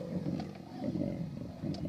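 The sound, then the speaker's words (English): A deep, rumbling lion roar holds steady and loud for a couple of seconds, a gravelly growl that swells slightly in the middle, with no speech over it. “No, I'm pretty sure he's a hungry lion.”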